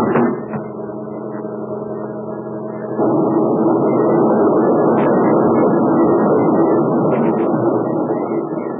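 A truck's engine drones steadily, then at about three seconds gives way to a louder, continuous rushing roar as the truck crashes over into a river. No one speaks.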